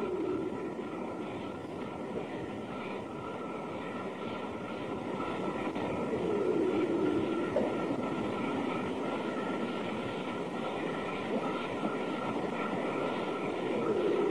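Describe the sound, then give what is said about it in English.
A low, steady growling rumble runs throughout, rough and droning, with a slightly louder, howl-like rising tone partway through. No one speaks. “Growling, kind of howling sound.”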